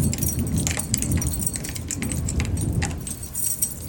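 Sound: keys jangling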